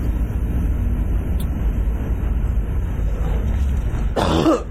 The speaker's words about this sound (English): Man. I shouldn't be coughing like that, but I am.